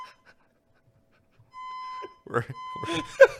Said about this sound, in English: I mean, we have had this fire alarm go off, what, 2-3 times in the run of this show now in the last 7 poached eggs?